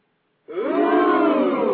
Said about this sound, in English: All right, that gets total applause. That gets one of these.